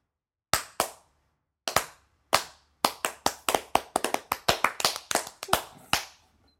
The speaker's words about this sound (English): You should start clapping slowly. You should be like...